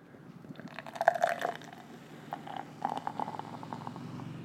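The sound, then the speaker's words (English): A Migration Brewing IPA from Portland, 7.3% alcohol by volume, glugs and splashes as it's poured into a glass, a steady gurgle with bubbly fizz rising through the pour, no voices. “Let's go ahead and give this guy a pour.”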